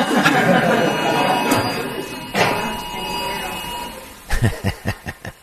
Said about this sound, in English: I know. He gets cut off by the emergency alert system. It's just a shame.